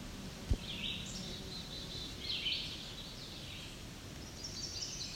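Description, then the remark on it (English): A chestnut-sided warbler sings faintly, a few short, high-pitched phrases spread across a quiet outdoor background with a soft low rumble and no talking. “It's a chestnut-sided warbler again. He's back to singing.”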